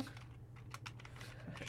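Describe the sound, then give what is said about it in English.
Rapid clicks of someone typing on a computer keyboard, a quick irregular patter of keystrokes over a low steady hum with no talking. “Are you typing his full title?”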